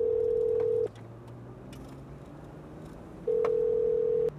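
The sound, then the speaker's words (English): A phone line rings out with two long, steady ringback tones separated by a couple of seconds of quiet, clear, with no voices. “If they pick up the phone, let's see.”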